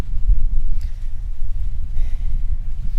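Wind gusts through fig tree leaves, heard from right underneath one of the trees, surrounded by old stone dry walls; a steady low rumbling roar with faint, soft rustling rising briefly over it. No one speaks.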